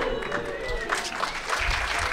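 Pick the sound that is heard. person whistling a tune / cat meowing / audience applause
audience applause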